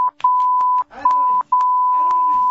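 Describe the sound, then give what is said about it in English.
A steady, high electronic tone keys on and off in Morse code, mixing short and long beeps with brief gaps, while voices murmur faintly underneath. “That was Morse code for that sucked.”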